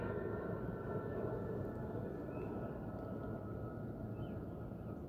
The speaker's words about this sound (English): The plane flying overhead. The sky's nice, man.